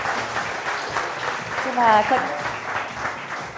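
A crowd at a conference applauds steadily as a speaker is welcomed to the stage, a dense wash of clapping throughout, with a brief cheer or whoop rising briefly in the middle.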